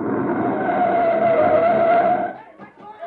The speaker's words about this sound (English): Halt your men. Halt. Hold up there. Hold up. There's a recon car coming up.